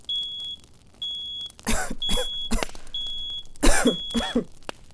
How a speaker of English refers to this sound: You starting to cough. It's all up in your lungs.